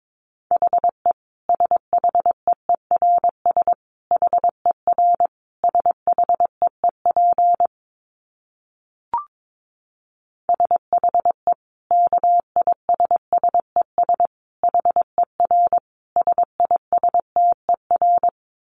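Morse code at 22 words per minute: a single mid-pitched tone keyed on and off in quick dots and dashes, with a short pause and a brief click partway through.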